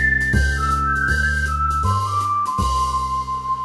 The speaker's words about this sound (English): the man took Quackling's chest of gold coins and headed down the road, whistling that happy tune